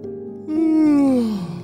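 A child's single drawn-out yawn, fairly loud, while holding a toothbrush before brushing teeth. A soft breathy start swells into a sustained tone that slides downward in pitch for about a second before fading.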